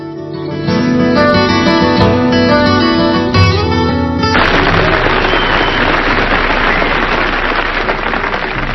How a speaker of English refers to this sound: Someone has said that when an audience applauds you before you speak, that represents faith. When they applaud in the middle of your speech, that represents hope. And when they applaud at the end, that represents love.